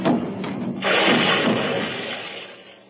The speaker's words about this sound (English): And once I fell downstairs with a barrel of beer.